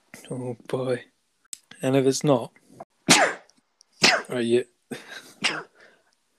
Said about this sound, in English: Bless you. Four sneezes, four of them. That's good luck, that.